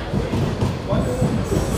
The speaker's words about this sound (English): Oh, I think I missed the train, didn't I? Oh, wow. No, I didn't.